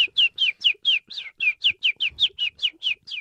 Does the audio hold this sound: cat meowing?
no